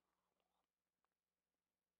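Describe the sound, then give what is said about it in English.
A soft, muffled stretch and a tiny throat click give way to one abrupt hiccup-like cough at the very end, short and fairly loud against an otherwise quiet background. “As I was coughing there, about ready to cough and hiccup there.”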